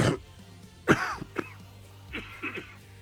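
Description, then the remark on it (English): A few rough coughs and throat-clearing noises played from a cough button, arriving as short bursts over about three seconds, with the loudest near the start and smaller rasps following. No speech. “I'm using the cough button tonight”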